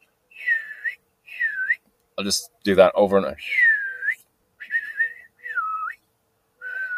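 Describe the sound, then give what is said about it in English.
A person whistles short, swooping birdlike phrases in a steady series, imitating a blackbird's call, with a brief spoken line in the middle; the whistles are clear. “I'll like, straight up whistle, dude.”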